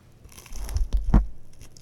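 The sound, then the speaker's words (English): A loud crunchy bite into the crispy edge of a pan pizza, with a sharp crackle and a few smaller crunches of chewing around it, no talking. “I'm going to take a bite because that's what I do, so let's get some crunch.”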